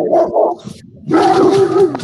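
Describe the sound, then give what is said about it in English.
Dogs bark loudly: a couple of quick barks, a short pause, then a longer run of strained, howling barks with no talking. “Well, it's actually that my daughter nannies, and she actually brought the children over to see the dogs,”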